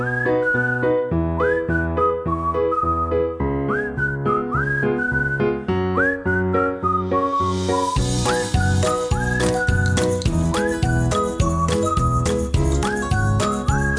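An upbeat instrumental tune led by a bright, sliding whistled melody over steady plucked chords and a rhythmic beat, growing fuller with added percussion partway through. No one speaks.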